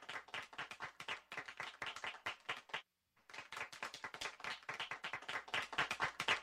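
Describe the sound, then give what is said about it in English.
A gentle clapping sound effect: soft, steady clapping with a quick, even rhythm of light hand claps, briefly pausing about halfway through before continuing at the same gentle level. No one speaks. “put on like gentle claps and we could just sit in this for a moment.”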